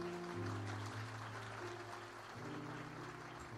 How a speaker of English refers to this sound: You guys haven't heard the word yet. Why are you clapping? I'm just saying my name.